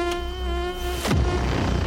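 A hoverfly buzzes with a steady, nasal drone; partway through its pitch swoops downward as it zips past, then the buzzing carries on a little rougher, with no talking.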